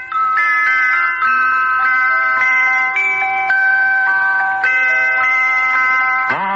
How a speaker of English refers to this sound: And by that evening, I'd made a beautiful little cooking pot. It had little bells all around it. And when the pot boiled, it played a little tune.